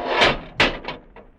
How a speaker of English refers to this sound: The doors, Dudley, they're closed.